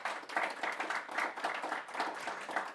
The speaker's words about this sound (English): How about a round of applause for our excellent panelists here?